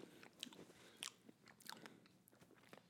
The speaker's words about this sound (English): Let me finish. I'm chewing this edible out.